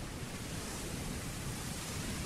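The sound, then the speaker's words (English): A steady, unbroken wash of ocean waves, a dense hiss and rumble that holds at an even level throughout, with no voices or other sounds. “Man, nothing better than listening to the sounds of the ocean.”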